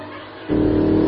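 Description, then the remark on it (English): A car engine suddenly surges louder about halfway through and holds a strong, steady roar as it accelerates, dominant, with no voices. “You are liable for any damages to the vehicle, so please stop the car. Slow down.”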